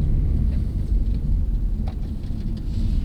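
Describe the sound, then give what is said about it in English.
A car rumbles along steadily with a heavy low-end drone, small jolts and rattles breaking through now and then as it drives down a bumpy dirt road to an abandoned apple orchard, fairly loud. “We climb back in the car”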